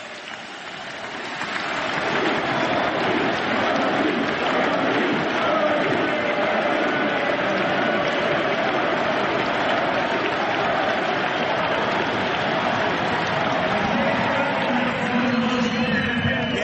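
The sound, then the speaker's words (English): A large ballpark crowd applauds and cheers at a White Sox ceremony retiring number 56, as Hawk Harrelson is introduced at field level to MC the event. The cheering is a dense, steady roar that swells over the first couple of seconds and then holds loud and unbroken. “Without any further ado, well, maybe a little, just for the applause, we'll head down to field level and bring you Hawk Harrelson.”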